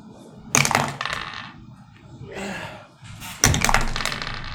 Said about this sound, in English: Why are you rolling two dice? Are you at disadvantage? No. I rolled an 11.